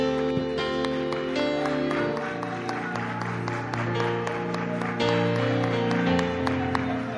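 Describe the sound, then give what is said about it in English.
An audience at a worship service claps steadily and continuously in expectancy unto the Lord over sustained, swelling music with held chords, the clapping a bright, scattered patter that runs throughout without any voices. “And would you clap your hands one more time in expectancy unto the Lord?”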